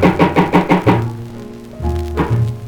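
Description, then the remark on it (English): Five quick, evenly spaced knocks on a door, moderately loud, then low sustained instrumental notes take over, with a brief swell of music toward the end. “Knock one more time.”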